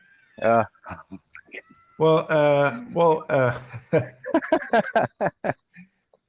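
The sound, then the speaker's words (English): A cat yowls in a series of drawn-out, wavering wails, rising and falling in pitch with short pauses between them, fairly loud, ending in quicker, choppy cries. “Oh, that awful sound. There's like a... You hear that? Is it a cat?”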